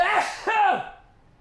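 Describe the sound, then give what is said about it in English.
Two quick, loud sneezes in close succession, each a sharp breathy burst with a voiced catch, then a fading breath afterward. “I know there's another sneeze in there.”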